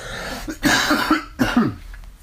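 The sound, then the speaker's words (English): Two harsh coughs from one person, about a second apart, each a sharp burst followed by a short rough tail, with no talking around them. “It's too bad this recording device doesn't have a cough button.”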